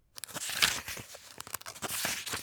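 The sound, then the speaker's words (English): Quick paper rustles and crinkles as a sheet of paper folds and creases itself over and over into an origami dragon, a busy stream of crisp crackling bursts with no voices. “It's a folding itself into an origami dragon and flying.”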